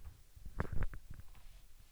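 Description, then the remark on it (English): A leather chair creaks with a short, low, squelchy burst of two or three rubbing squeaks that sounds much like a fart, with no one talking. “That wasn't a fart. I'm in a leather chair.”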